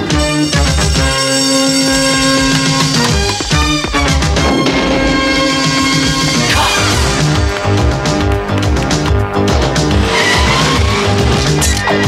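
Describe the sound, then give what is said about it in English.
The theme intro of the late-1980s cartoon TV show C.O.P.S. plays loudly and continuously, with a driving bass line, bright synth-like tones and squealing, tire-like sound effects mixed in, and no voices. “that theme, that intro there just seems so deadpan.”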